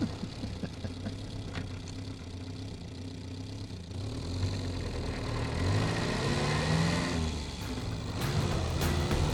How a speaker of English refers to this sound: Well, the perk being that you get to drive the Ruby. Oh, such an adorable little car.